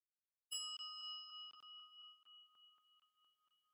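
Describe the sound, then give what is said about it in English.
A single gong strike rings out clearly on its own, its bright metallic tone sustaining and then slowly fading away over a few seconds. “The sound of the gong appears and disappears.”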